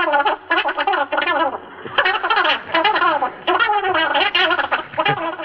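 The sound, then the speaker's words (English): A voice on a record played at high speed, making the voice of Donald Duck: squawky, duck-like chatter, high-pitched and garbled, in rapid bursts with brief gaps, like a cartoon duck talking. “Here's the same record at high speed.”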